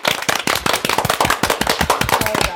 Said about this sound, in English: Should we give them a clap anyway? Give them a clap.